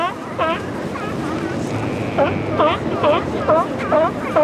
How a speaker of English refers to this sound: The belchy roar is coming from the Stellar sea lion, where the barking is coming from the California sea lions.